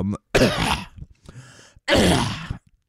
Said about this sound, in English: sorry, I had a cough there.